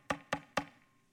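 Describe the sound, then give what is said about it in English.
Three quick, evenly spaced knocks on a door, crisp, each with a short hollow ring, followed by quiet. No one speaks. “In the time of Greek culture, extending on to the Romans, if you did something really special, they'd come and they'd knock on your door.”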